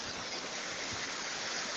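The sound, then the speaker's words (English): A steady, dense roar of rushing water pours without pause, a broad hissing wash of two waterfalls, about 10 meters high, joining and crashing into one stream up a short forest track near Santiago at dusk, loud with no voices. “I found a waterfall on my way home from work today.”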